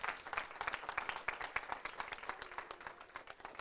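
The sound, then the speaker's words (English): A room full of people applauds steadily for Pastor Jeremy, MLT and the panel that came, dense overlapping claps sustained throughout with no voices standing out. “So therefore, when we talk about that, and I'll just stop there and say, can we give a big applause for Pastor Jeremy, MLT, and especially the panel that came?”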